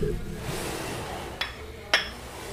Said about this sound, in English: Y'all clinking, I'm drinking. Ooh-wee. Ooh-wee. Bitch, don't take the first sip before you clink. Don't be an asshole.